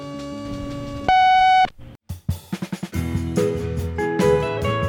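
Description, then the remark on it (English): A loud, steady electronic beep from an answering machine, lasting about half a second, set among other tones and a quick run of short clicking pulses; nobody speaks. “You've reached our answering machine. Please leave a message.”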